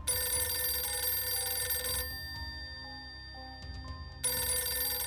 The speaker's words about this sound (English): After arriving home from a visit to comfort Lois, he received a phone call.